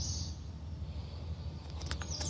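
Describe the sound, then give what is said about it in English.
Faint bird chirps and tweets in a field of dandelions and yarrow drift over a steady low outdoor rumble, with a few brief high calls near the end. Quiet, open-air ambience with no talking. “Lots of mosquito friends with me, surrounded by birdsong.”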